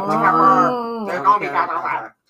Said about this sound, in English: There's cows outside.